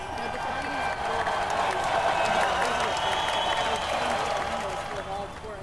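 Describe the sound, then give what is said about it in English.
Passengers on an airplane applaud together after landing, a dense steady patter of many hands clapping at once, with a murmur of voices mixed underneath throughout. “I thought that only, like, wait, this happens when Floridians, like, land, they clap?”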